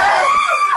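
A woman screams loudly in one sustained, high-pitched cry lasting under a second, its pitch dipping slightly in the middle before rising again at the end.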